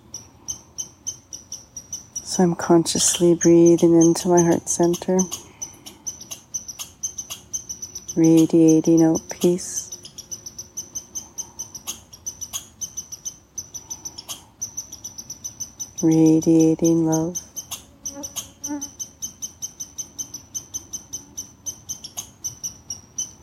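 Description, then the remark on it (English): A squirrel's alarm call repeats steadily throughout: rapid, sharp, high-pitched chirps in a persistent rhythm, while a person speaks calmly in three short stretches over it. “Perhaps the squirrel isn't even alarm calling at me.”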